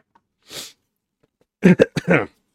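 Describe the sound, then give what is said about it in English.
A sharp breathy intake, then a quick cluster of three or four harsh coughs, fairly loud, with no talking around them. “You gotta get the coughs out early.”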